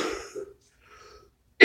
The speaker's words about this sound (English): I think I'm going to have you read this purport because I'm going to cough the whole time.